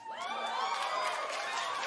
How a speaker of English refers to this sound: 95% of that audience is white people. You can tell by the way they cheer.